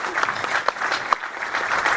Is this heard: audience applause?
yes